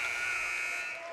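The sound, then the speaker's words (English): A basketball arena buzzer marks the end of the first half as a three-point shot falls short, blaring one loud, steady, harsh tone for about a second, holding constant before easing off slightly at the end, with faint background noise underneath. “He pulls up for three at the buzzer.”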